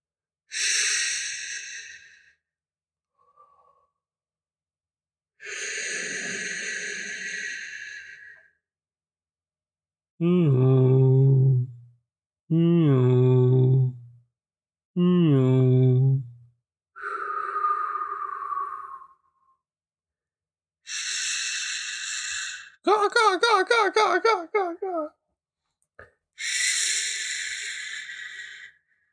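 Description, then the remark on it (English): A voice imitates soothing ocean sounds: about eight drawn-out vocal calls separated by pauses, alternating between high, airy squeals and lower, wavering, buzzy moans, fairly loud and with no talking. “No, I was doing soothing ocean sounds.”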